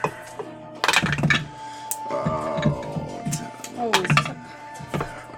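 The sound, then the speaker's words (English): Dice, rolled to determine claw damage, clatter and tumble across a hard surface in a few quick bursts of sharp clicks, with voices murmuring in between the rolls. “I'm going to roll it because it's fun to roll dice.”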